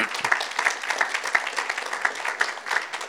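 A round of applause from a crowd, dense overlapping hand claps forming a steady, fairly loud wash of sound that holds evenly for a few seconds.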